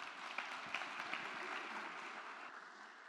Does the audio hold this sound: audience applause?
yes